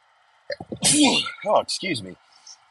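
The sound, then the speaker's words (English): A single loud sneeze from a person getting over a cold, a sharp breathy burst followed by a couple of short voiced gasps and sniffs as it trails off. “sorry, I think I'm about to sneeze.”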